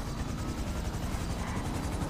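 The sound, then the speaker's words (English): A helicopter passes overhead, its rotor thumping in a steady, rapid pulse over a constant low roar, loud throughout with no voices. “If I see that helicopter again, I will shoot it down myself.”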